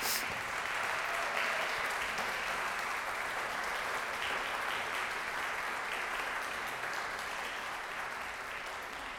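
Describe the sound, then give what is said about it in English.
Sustained applause from an audience for crew members from behind the cameras receiving awards, a dense, steady patter of many hands clapping that holds at an even loudness for the whole stretch and tapers slightly at the end. “can you come here from behind the cameras to receive your award and your applause?”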